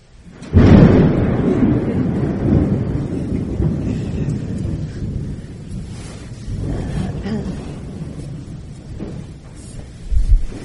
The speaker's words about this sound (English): love thunderstorms.